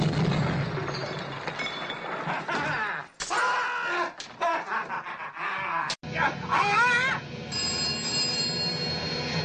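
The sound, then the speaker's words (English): A telephone bell rings at Inspector Clouseau's residence within a dense, loud film-style soundtrack, with voices, sudden bursts and abrupt cuts around it. “The phone is ringing.”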